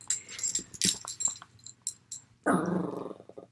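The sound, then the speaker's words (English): A playful young dog growls and yaps in short, scrappy bursts, ending in a longer throaty growl-bark with no talking over it. “We have a crazy pup, by the way, so it's gonna be a fun episode. It's very playful.”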